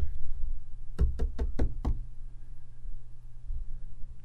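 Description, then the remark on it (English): Five sharp knocks tapped out to imitate a footstep-like noise, in a quick, even rhythm over a low steady rumble, followed by quiet. No one speaks. “And it sounded kind of like footsteps.”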